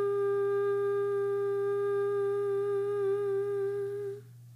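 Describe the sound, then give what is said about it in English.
A single low chanted 'hum' mantra tone sung on the note G, held steadily by one voice, fairly loud, its rich drone unbroken for about four seconds before trailing off into quiet. “But so we're going to chant hum for 3 minutes with the note G, which is hum, or you can sing hum if that's not too low.”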